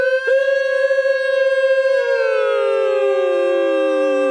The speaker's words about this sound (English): That's the 2016 whistle, guys.